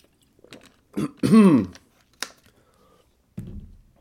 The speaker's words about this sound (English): I'm going to have some water and a sip of coffee and try and get it right for the rest of this review.